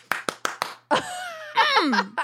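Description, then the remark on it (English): Four quick, sharp hand claps in an even rhythm, fairly loud, followed by drawn-out vocal sounds from people, something like exaggerated exclamations or laughter. “The clap.”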